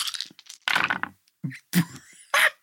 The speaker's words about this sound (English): I got 1 6. That is wild. Nice. I had 8 dice to roll, and it was just 1 freaking 6.